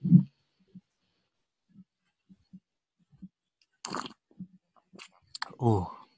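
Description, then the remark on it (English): Quiet mouth clicks and lip sounds lead up to a brief airy slurp as someone sips a cup of coffee, followed by a short voiced exhale of satisfaction. “Well, with that in mind, let's go for the sip.”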